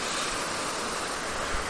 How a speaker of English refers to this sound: Crazy fast water. Wow. So I'm just heading to the bridge now. I'll get a swatch at the water going under the bridge before I turn and head back home.